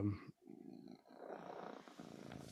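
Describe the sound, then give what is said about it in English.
A female cat named Kitty purrs, a steady low rumbling that pulses in long breaths, pausing briefly between cycles. “Aw, Kitty.”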